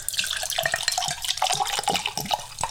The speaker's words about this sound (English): step one is to always uncork and pour our glass of sherry. It's my favorite part.